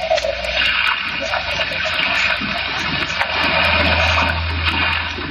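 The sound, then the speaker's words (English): A loud, steady roar of rough sea under a hard wind, heard from a small fishing boat, with water surging and churning continuously throughout and occasional heavier swells. No one speaks over it. “I'm not much of a sailor, and as the wind was blowing hard and the sea racing, I'm afraid I wasn't a very intelligent companion.”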